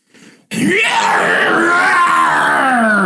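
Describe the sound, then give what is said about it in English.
A voice lets out a long, unearthly scream that imitates a distant cry, loud and sustained for a few seconds with a wavering pitch, following a brief quiet rustle. “And you just hear in the distance a unearthly scream.”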